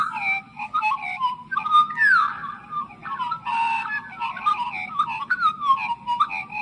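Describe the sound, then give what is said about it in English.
A bird song recording played from a card: a flowing run of clear, whistled notes that slide up and down in pitch and overlap in several tones, over a steady low hum throughout. “I found a card that has an actual recording of the bird.”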